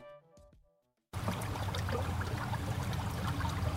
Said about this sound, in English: The water of Sunday Creek flows through a surreal orange landscape as it makes its way through the small town of Corning, Ohio.